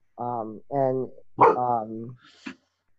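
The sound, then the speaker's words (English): A male red-nosed pit bull lets out three drawn-out, tonal barks in quick succession after hearing something, fairly loud, followed by a brief sharp sound as it falls quiet. “Sorry, my dog just heard something.”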